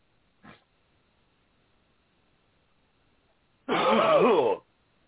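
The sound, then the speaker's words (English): A brief faint sound, then after a pause a single loud, forceful cough with a strained, rasping, throaty voice, lasting about a second, with no talking; a person takes a deep breath and coughs hard as instructed. “Take a deep breath and cough hard.”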